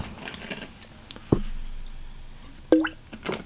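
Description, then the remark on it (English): Two wet, gloopy plops of a drink, one around the middle and a second louder one near the end, each a short bubbly splash with faint rustling between. “Dude, that sounded like a turd hitting the water. Put your drink down and gloop.”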